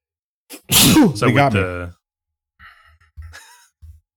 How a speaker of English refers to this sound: I thought you were saying they got you, like someone shot you in the back of the head with a sniper rifle and it caused you to sneeze.